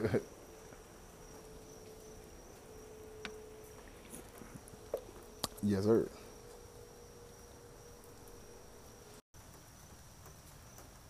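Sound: heavy rain outside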